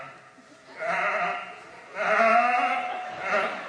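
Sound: sheep bleating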